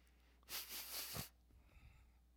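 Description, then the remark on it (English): A person imitates snorting drugs through the nose: one sharp, forceful inhaled snort lasting under a second, followed by faint low shuffling noise. “I was trying to show you I was snorting drugs there. I wasn't just sniffing because of my cold.”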